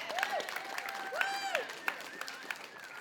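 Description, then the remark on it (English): A church audience at Mosaic Church applauds its worship team in a steady, dense wash of clapping, with rising and falling whoops and cheers cutting through now and then. “I want to just give a round of applause to our worship team again.”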